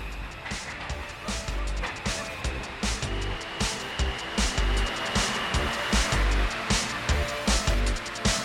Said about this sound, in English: Oh, here's the M train. Can you hear it? We're in a sound collage.